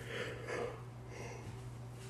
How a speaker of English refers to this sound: I'm sorry for all the yawning, you all.